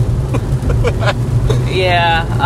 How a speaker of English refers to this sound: Your usual background noise coming back from a hike is traffic, but now you get traffic along with some moderate to heavy rain. Use it as ASMR.